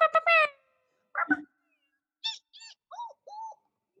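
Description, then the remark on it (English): A person vocally imitating a car alarm: a string of about six short, high-pitched squeals and warbles with shifting pitch, separated by brief pauses. “That was a car alarm. No, that was bad. That sounds like a monkey. No, that's a car alarm.”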